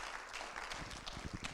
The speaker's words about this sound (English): Somebody that remembers when God saved you, would you give the Lord a tremendous hand clap of praise, right?